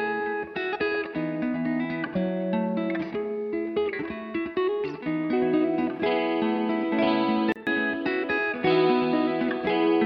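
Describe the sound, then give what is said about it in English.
A dense, effects-processed guitar track plays continuously at a steady, fairly loud level while being mixed, with light compression, a little extra top end, layered sustained tones and a relatively dry sound where the reverb has been pulled down. “Maybe pull down the reverb on this one.”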